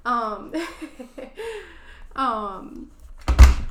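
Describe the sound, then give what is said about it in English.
A phone drops with a single sharp thud right at the end, just after a stretch of laughing, chuckling voices. “Sorry, I just dropped my phone again.”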